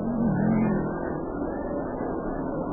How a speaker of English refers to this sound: Yeah, the cars will light up if they go around the track, and they'll fall in behind the lead car. And then, if they get the go-ahead flag, if they pass the judges' stand, we'll have a start.